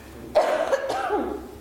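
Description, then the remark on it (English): A single loud cough bursts out, followed by a raspy throat-clearing tail that trails off over about a second, with no talking alongside it. “Sorry, guys, I'm gonna cough.”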